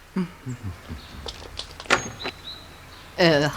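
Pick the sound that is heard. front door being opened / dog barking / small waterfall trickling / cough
front door being opened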